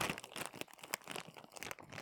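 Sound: package being opened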